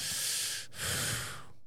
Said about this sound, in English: He's like, deep breathing